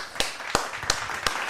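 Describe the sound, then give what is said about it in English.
Four crisp hand claps in a slow, even rhythm, each a sharp, bright smack standing out over a faint steady background hiss. “So Throbbers was the top scorer on the week, so we'll continue that clap”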